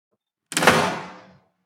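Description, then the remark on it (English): A woman's front door swings shut as she turns back into her house, a single solid thud, fairly loud, its brief rumble fading over about a second with no voices. “then turns back into her house and closes the door.”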